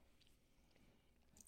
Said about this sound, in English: I'm munching on some spaghetti left over from the